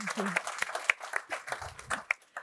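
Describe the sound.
A crowd applauds steadily, dense clapping filling the room at moderate volume, with scattered sharper claps and a few indistinct voices murmuring underneath.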